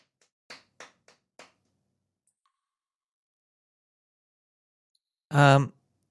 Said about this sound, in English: I'm surprised foot clapping never really got popular. You hear really nice slaps out of the bottom of your foot.